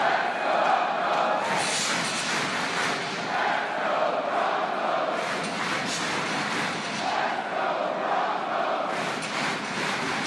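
A huge stadium crowd at a Rush game chants the "Let's Go Broncos" chant in unison, a steady roar of many voices swelling into repeated rhythmic phrases every couple of seconds, loud and continuous throughout.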